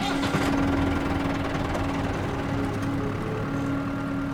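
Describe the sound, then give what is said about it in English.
A farm tractor engine runs steadily at a low, rumbling idle, continuous throughout, with a constant droning hum and slight mechanical rattle, as the tractor is pulled into a barn on an old farm surrounded by cornfields. “He pulls the tractor into the barn the way he has 100 times before.”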